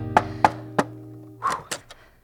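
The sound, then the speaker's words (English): Two visitors knock on someone's door at an early hour as the sun comes up: six solid knocks, three evenly spaced raps followed by a quicker, rougher cluster of three, fairly loud over a faint low hum, with no one speaking. “What brings the two of you rapping on my door at such an early hour?”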